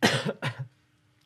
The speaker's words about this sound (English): I had to think so much about it, I had to cough.